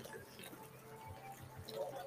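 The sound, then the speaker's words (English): Water pours steadily in a long pour and splashes onto coffee grounds, a continuous liquid trickle and patter that swells slightly toward the end, with no talking. “And I like to kind of make it splash.”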